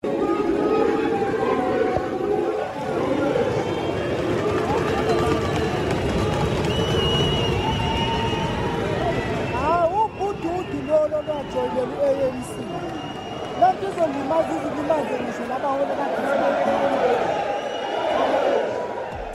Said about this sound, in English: Cyril Ramaphosa appeared before the conference on Sunday. You know what? We all knew he would be booed. And you know, this is the reception he got.